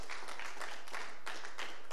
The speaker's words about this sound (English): Well, give the Lord a clap offering.